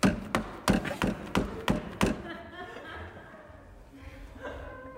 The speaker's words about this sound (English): You need the hammer. Oh, you need to bang the shoe. I need to bang it.